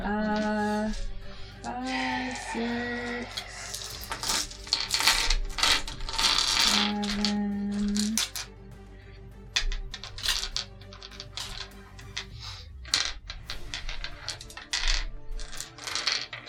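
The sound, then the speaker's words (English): Lots of small eight-sided mini dice (d8s) clatter and tumble onto a surface in repeated bursts during a large damage roll in a tabletop game, a busy rattling jumble, with sustained tonal ringing underneath. “Please stand by as we accumulate extra dice. The comically large dice roll of the evening.”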